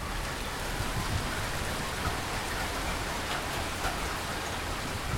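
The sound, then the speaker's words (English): Heavy, steady typhoon downpour roaring without pause, a dense wash of rain pounding surfaces at constant loudness, with no voices. “And before I do that, we're going to take one more peek at this rain because it's just insane.”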